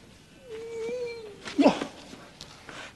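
A single drawn-out cat meow, steady and then sliding down in pitch, followed by a short, louder yowl-like burst. It is not loud, with a faint background hiss.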